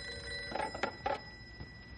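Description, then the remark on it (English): An old-fashioned telephone bell rings in a few quick, rattling bursts in a ranger station office, clear, over a steady background hum with no one talking. “But as soon as any one of us mentions that we're glad we don't have to go out in it, the phone rings.”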